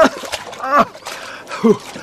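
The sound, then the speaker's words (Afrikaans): Water splashes and sloshes in short bursts as someone swims laps in a lane at the sea, with brief voice-like sounds mixed in between the splashes. “Ek het gedink ek kom swem 'n paar lengtes voor werk.”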